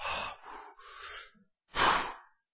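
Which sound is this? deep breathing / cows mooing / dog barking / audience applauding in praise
deep breathing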